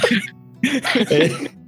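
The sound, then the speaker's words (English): A person coughs and clears their throat: one short rough burst, a brief pause, then a cluster of several harsher, voiced coughs in quick succession. “Start coughing or something.”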